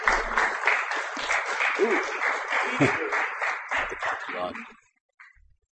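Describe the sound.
An audience claps to welcome the next performer to the stage, a steady, dense, loud burst of applause lasting several seconds, with scattered voices mixed in, before it cuts off abruptly and leaves a brief faint noise.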